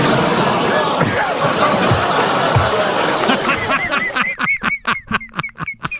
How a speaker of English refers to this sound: Wow. The groans from the crowd. What are you groaning at?